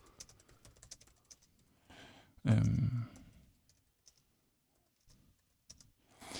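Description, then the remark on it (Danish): Rapid clicking of a computer keyboard as an application letter is typed, with a brief louder clatter midway, then slowing to a few scattered keystrokes before picking up again. No one speaks. “Kunne man skrive det?”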